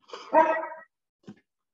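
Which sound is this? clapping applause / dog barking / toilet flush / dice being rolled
dog barking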